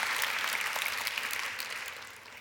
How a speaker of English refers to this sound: The communications, amen, let's clap for them too, across the board.